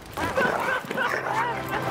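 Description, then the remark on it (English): A dog barks and yips excitedly, a rapid run of loud, high-pitched yelps and short barks filling the whole two seconds with hardly a pause. “What's up, dog? Me and you gonna go on a little road trip.”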